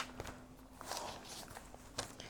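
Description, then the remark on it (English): Several soft, irregular footsteps thud as someone walks down stairs, over a faint steady hum. “And there's footsteps coming down them stairs again.”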